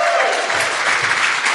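Loud, steady applause from an audience fills the whole moment, a dense patter of many hands clapping at once with a faint crowd murmur beneath.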